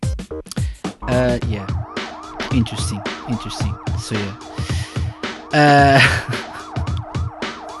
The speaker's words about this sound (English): the sirens in the background aren't helping things.